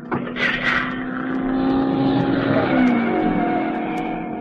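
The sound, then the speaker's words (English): A race car engine revs loudly and steadily on a race track, its whining pitch climbing and holding for several seconds, with a brief rough burst at the start and no voices. “The car zigzagged along the track as the driver fought to regain control”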